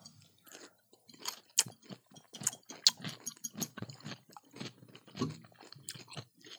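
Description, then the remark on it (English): Loud, wet crunching as two different kinds of pickles are bitten and chewed, a steady run of sharp crackly bursts with brief pauses between bites and no talking. “We've never done two different pickles at the same time.”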